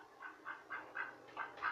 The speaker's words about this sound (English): I'm in the kitchen now. You hear my duck.